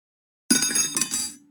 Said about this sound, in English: Oh, I dropped my fork.